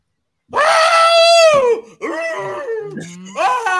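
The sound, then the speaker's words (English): A man lets out a loud, warbling Tarzan-style yell, a long sustained wavering cry followed by a few shorter yodeling bursts, forceful with no talking over it. “Oh, let out a fucking Tarzan yell.”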